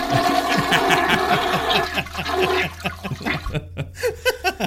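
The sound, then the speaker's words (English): A toilet flushes loudly, a rushing roar of water that settles into bubbling gurgles and a few sputtering drains as the tank empties. “a 21-year-old college student flushed Pebbles, her dwarf hamster, down”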